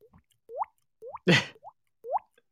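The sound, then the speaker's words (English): A voice imitates water dripping with a series of wet, rising plops made by the mouth, spaced evenly about half a second apart, with one louder breathy burst in the middle, made by a student in class during a test. Clear, no talking. “He used to think that there was something dripping there.”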